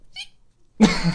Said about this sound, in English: I'm just, sorry, I'm just, trying to suppress a burp at the worst time. God, he's talking about an emotional thing. I don't want to let one go right now. This wouldn't be very appropriate.